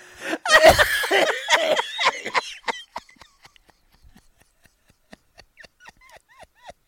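A loud coughing fit: a rapid run of harsh, hacking coughs that gradually weakens into smaller, scattered coughs and short wheezy gasps.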